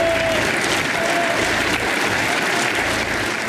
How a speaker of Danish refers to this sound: Klapsalverne vil ingen ende tage. Og parlamentets formand, Roberta Metsola, hyldede Zelensky.